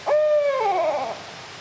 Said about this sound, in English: Birds are still asleep, but for a barred owl perched on a branch high up above.